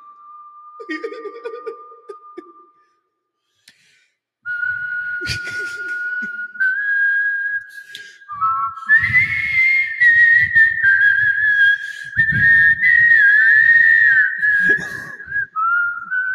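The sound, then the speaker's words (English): A person whistles a tune in long, sliding notes, pausing briefly before carrying on, while giggles and stifled laughter break out underneath. “can you whistle the Kistler Whistler from Ford?”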